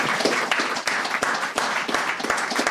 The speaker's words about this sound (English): Please give Joe a round of applause.